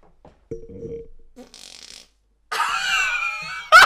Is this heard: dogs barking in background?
no